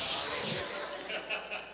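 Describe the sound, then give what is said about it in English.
A voice imitates a balloon being let down by a pin: one sharp, airy hiss lasting about half a second, loud and high-pitched, then dropping away to near quiet. “Listen, God knows how to take a little pin to your balloon.”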